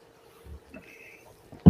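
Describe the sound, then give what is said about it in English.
A drink is poured into a glass in a short, quiet trickle lasting under a second, followed by a sudden loud clunk. “Hey, pour it up. Let's pour it up.”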